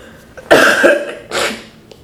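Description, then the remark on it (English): Two loud coughs from a single person clearing phlegm before reading a piece aloud, the first harsh and wet, followed after a short pause by a second, shorter cough. “Okay, and before I read that piece to you, I'm going to go ahead and do a real quick cough right quick.”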